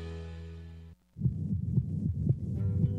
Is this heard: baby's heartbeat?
yes